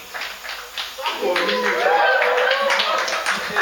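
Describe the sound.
Steady applause from a crowd, a dense crackle of many hands clapping throughout, with raised voices calling out over it partway through.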